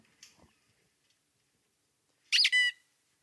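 Two quick, loud squeaks from a squeaky toy sound back to back, shrill and close, after a near-silent stretch with only a few faint clicks.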